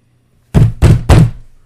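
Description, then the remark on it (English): Three heavy knocks by a mother on a door in steady succession, each one a loud, resonant thud with a short decay, after a moment of quiet. “My mother knocked on the door.”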